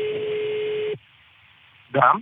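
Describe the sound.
A single steady telephone ringing tone sounds for about a second over faint line noise before a phone call with a violinist, then breaks off into a quiet pause before a voice begins speaking.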